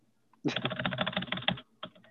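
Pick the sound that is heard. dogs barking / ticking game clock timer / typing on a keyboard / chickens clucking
typing on a keyboard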